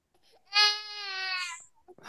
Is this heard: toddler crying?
yes